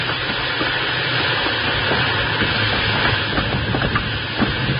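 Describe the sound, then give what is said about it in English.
A steam train slowing down as its reverse is applied rumbles along the rails with a constant loud hiss and roar, broken by scattered clanks and clicks of the wheels; no one speaks. “I'll give her all the steam you've got back.”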